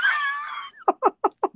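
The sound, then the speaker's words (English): A dog chews a squeaky toy: one drawn-out, wavering high squeal, then four quick, evenly spaced squeaks as the toy is bitten again and again. No one talks. “there's a dog over here just going off on this squeaker.”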